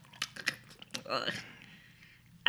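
Wet lip-smacking and mouth clicks as someone sips a drink: a handful of sharp smacks spread over a couple of seconds, with a brief slurping sound in the middle.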